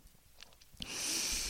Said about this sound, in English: So let's practice. I would ask that you take a deep breath in.